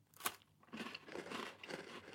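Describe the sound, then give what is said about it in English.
Crisp crunching of a bourbon cream biscuit being bitten and chewed, a sharp first bite followed by several rough, crackly chews in quick succession, with no talking. “When you first put it in your mouth, you're just eating crunchy nothing.”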